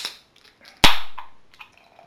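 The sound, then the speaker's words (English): A 330ml can of Yule, a 6.8% winter ale, cracks open with one sharp, loud pop, then a fizzing hiss that fades over about a second, framed by small faint clicks and rustles. No one speaks. “Let's crack it and give it a go.”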